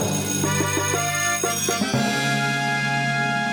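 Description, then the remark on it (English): A bell rings repeatedly in quick strikes, each hit bright with a long ringing overtone, then settles into a sustained sounding tone that lingers to the end. “Spence, first things first, ring the bell stats.”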